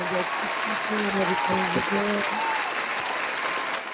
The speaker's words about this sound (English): All right. Let's give everyone an applause.